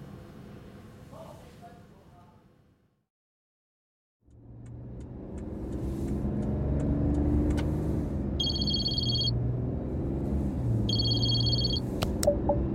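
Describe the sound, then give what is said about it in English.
After a short silence, a car engine starts up and runs with a steady low rumble. Two brief bursts of high electronic beeping sound over it. “I will call you from the car.”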